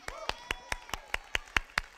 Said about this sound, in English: There's power in your palms. There's power in your praise. Hallelujah. We clap our hands.